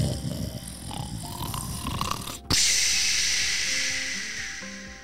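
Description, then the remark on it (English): Loud, rough snoring rumbles, followed after a brief break by a long, hissing exhale that slowly fades. No one speaks. “It always kept William up at night when … would snore because he was a very loud snorer.”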